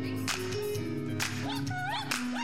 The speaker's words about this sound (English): Come on, put your hands together. Come on, clap with us.